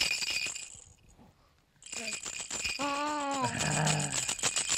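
A baby's toy rattle is shaken in quick, busy bursts by parents playing with their 8-month-old son, with a short pause early on; a brief high-pitched voice-like coo sounds partway through the rattling.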